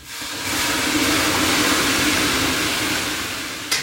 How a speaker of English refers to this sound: He ladles water onto stones on top of the wood stove.